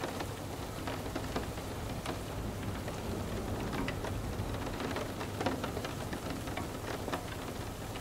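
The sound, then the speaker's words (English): Steady rain falls continuously with scattered droplets ticking on a surface, over a low rumbling hum that hints at thunder. No voices are heard. “Feel the wonder and healing of what the rain brings, even allowing your mind to feel that freedom.”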